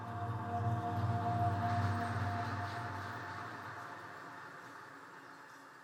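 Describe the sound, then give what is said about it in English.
A train rumbles steadily along the tracks, a low continuous roar with a faint tonal whine above it, loudest at first and then slowly easing as it rolls on. No voices. “And the train carried on.”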